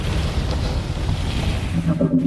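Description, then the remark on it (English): Stormy wind on an alien planet in a video game, heard as the ship goes very fast and low, roars in a steady, dense rush with a deep rumble underneath, and a few low, warbling tones rise through it near the end. “There's always a storm.”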